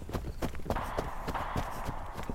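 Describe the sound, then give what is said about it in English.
Horse hooves clip-clop in a quick, steady rhythm, each strike sharp, over a constant wash of background noise with no voices, as riders flee on their horses. “I get one through the knee as they try to mount their horses.”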